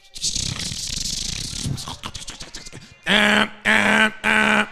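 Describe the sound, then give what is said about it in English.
A voice imitates a dial-up modem connecting to America Online over a phone line: about three seconds of raspy, hissing static with rattling bursts, then three loud, buzzy, harmonic tones of equal length in a steady rhythm. “Your phone line would literally call to the internet. And when it called, it'd be like...”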